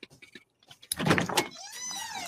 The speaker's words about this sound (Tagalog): Oh, may paparating na motor. Baka siya na yan.